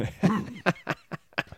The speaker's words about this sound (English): I'm debating how much of the sniffling I'm going to edit out of this episode versus just letting it be.